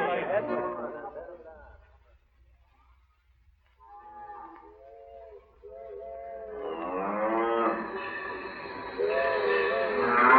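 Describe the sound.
Cattle blocking a railway right of way, holding up the Wyoming special train, low in long, drawn-out moos: first a few softer calls, then a louder overlapping chorus of several animals, after a brief voice at the start.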